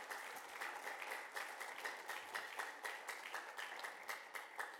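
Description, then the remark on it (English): Steady applause from a church audience showing appreciation for the church team, many hands clapping in a dense, continuous patter with slight rhythmic swells, moderately loud and with no voices over it. “Would you give them a hand clap of appreciation?”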